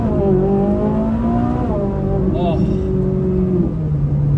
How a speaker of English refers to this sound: I think I just wet my pants. I haven't heard a car like that in a while. And, oh my God, we are right now in the race setting.